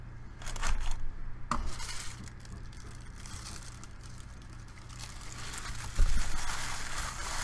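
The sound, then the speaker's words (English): Crinkling and rustling of gold paper as a knife is wrapped and packed away, with a few sharper taps and clinks mixed in, steady handling noise throughout and no talking. “Let me get rid of my knife. I'm gonna pack this back away so it stays safe.”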